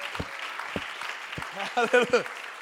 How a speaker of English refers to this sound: One clap, two clap, three clap, four.